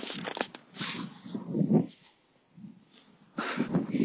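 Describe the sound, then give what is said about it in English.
Wind buffets the microphone in uneven gusts, a low rumbling roar that swells and drops several times, with a loud burst near the middle and another at the end. No one speaks. “Going home, how does that work? Wind.”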